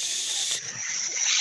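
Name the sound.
air hissing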